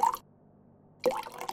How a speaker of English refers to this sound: Can I pour you a drink? Wine or something stronger?